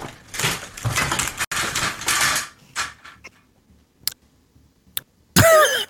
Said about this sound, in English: What the fuck just happened? I think his chair broke. Wait. Oh, is there more? Yeah. My chair broke! This one broke!